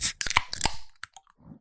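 Drinks being cracked open by the microphones: a burst of fizzy hiss followed by a quick run of sharp, crackling clicks and pops, then a few softer taps fading out, with no talking.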